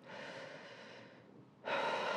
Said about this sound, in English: Yeah. That's like taking a breath, right?